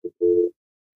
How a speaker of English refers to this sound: Yeah, all I got was a dial tone. Yeah, you're on now.